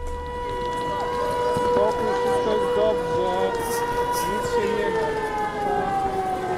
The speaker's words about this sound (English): Air raid sirens like the one you just heard have pierced the skies over Ukraine every day since the war began a year ago. Some estimate they've rung 15,000 times, every time warning people of a potential airstrike.